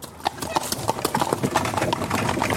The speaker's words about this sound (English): climbed into his wagon while Alexei took the horses and drove him away